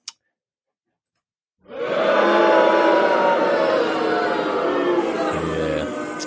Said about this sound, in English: Boo hiss indeed here.